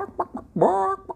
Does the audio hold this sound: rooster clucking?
yes